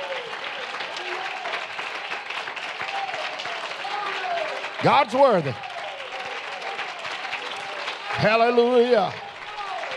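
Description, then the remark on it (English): A church audience claps and applauds in praise of the Lord steadily for the full ten seconds, a dense continuous patter, while individual voices shout out loudly over the applause twice. “Give the Lord a real good hand and clap of praise.”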